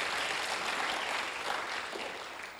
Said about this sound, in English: If you're blessed, give Him a clap.